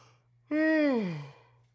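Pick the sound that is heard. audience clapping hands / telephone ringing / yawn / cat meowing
yawn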